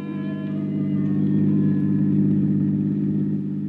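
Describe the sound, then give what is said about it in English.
A car engine rumbles steadily, swelling slightly as it revs and pulls away with the driver and a woman aboard, a loud, continuous low drone with no voices over it. “I shut the door, headed once more for my car. The lady of the house was waiting. We took off.”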